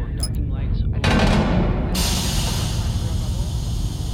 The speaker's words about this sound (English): Venting airlock. It's gonna be loud.